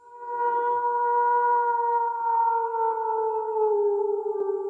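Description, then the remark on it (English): A single long wolf howl holds a steady, mournful pitch for several seconds, sliding slightly lower toward the end. It is loud, with no voices or other sounds. “It's time to get our howl on.”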